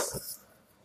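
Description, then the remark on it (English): A single sharp sneeze bursts out, a quick explosive puff of air lasting a split second before fading into quiet. “God bless you, my eyebrow.”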